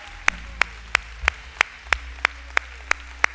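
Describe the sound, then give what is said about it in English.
Steady, evenly paced hand clapping, about ten crisp claps in a row at a brisk rhythm, as a church audience gives a hand clap of praise to the Lord on a Sunday, with no talking over it. “Come on, can you put your hands together for the Lord today? Come on, can you give him a hand clap of praise?”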